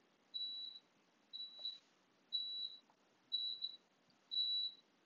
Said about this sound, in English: Got some beeping going on over there.